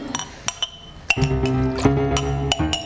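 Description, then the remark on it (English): Glass clinks sharply several times at irregular intervals, with a few of the hits leaving a bright, lingering ring, as a mop wipes spilled fluids off the floor; fairly loud, with no voices. “Yes, that famous glass mop.”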